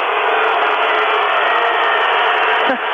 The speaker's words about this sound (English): Acadia not liking this this call at all. Sounds like a pro-Acadia crowd around here. Well, they are the underdog, and they are real close.